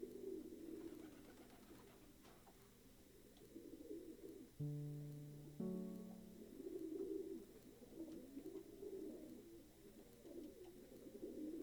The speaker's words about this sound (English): and you can hear pigeons roosting somewhere above in the rafters of the roof.